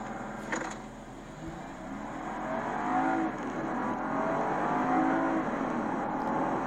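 An inline-six car engine with a 48-volt mild hybrid system revs smoothly and steadily, its muffled hum rising and falling in pitch with faint harmonic tones layered over broad road rumble, with no talking.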